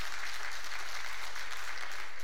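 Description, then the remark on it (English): A large crowd in a church cheers and applauds a man for his courage in taking believer's baptism, steady clapping and scattered shouts filling the room without a break, loud, with no single voice standing out. “I got a church full of people that's going to cheer you courage.”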